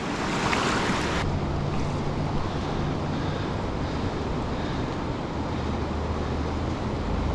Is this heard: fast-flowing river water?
yes